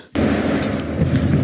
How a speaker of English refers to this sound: I can kind of hear something in the background. It's a bowling strike. Oh, it's a bowling strike.